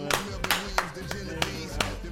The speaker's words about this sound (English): All right, well, clap it up, man. Thank you so much.